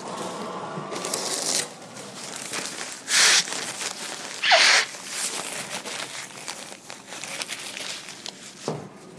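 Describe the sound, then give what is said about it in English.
Someone blows their nose into a paper towel: several loud, breathy honking bursts amid steady crinkling and rustling of paper, with no talking. “Why do I smell chlorine when I blow my nose?”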